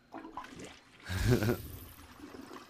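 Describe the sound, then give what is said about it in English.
A toilet flushes in a short, loud whoosh of rushing water that swells and quickly drains away, with quieter low murmuring sounds before and after it. “Yeah, but we're gonna flush it.”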